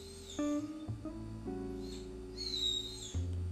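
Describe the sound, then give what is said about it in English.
A dog named Viego howls in long, steady, mournful tones that step between a few pitches over a few seconds, loud and unbroken, with no one talking. “That's Viego. My dog I got with my ex.”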